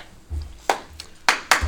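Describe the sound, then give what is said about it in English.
A few scattered hand claps, three or four sharp bright slaps at uneven intervals, over a low rumble, like the thin start of audience applause rather than a full ovation. “Big applause. Big applause.”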